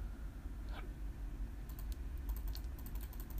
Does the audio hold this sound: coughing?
no